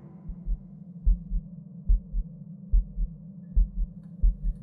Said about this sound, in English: For a moment, all Tanya knew was her own heartbeat.